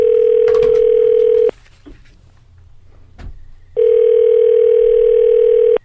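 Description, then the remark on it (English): Two long, steady ringback tones on a phone line as a call is placed to the speaker's brother, each about a second and a half, separated by a couple of seconds of quiet line noise with faint clicks, loud. “Let me see if I can get him on the phone.”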